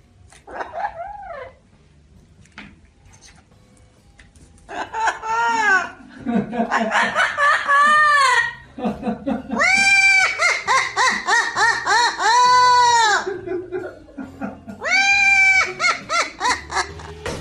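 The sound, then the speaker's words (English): A parrot cackles wildly in loud, shrill bursts of rapid, warbling laughter-like calls that rise and fall in pitch, starting after a brief squawk and a pause, with no one talking. “And now, for your listening pleasure, here's a parrot I found on YouTube, cackling wildly.”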